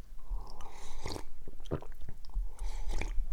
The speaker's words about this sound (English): So let me take a sip here, and then we'll get into evidence 2.0